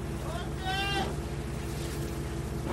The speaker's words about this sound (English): That's a shout from the stern to say everything is okay, I can go ahead on the boat now.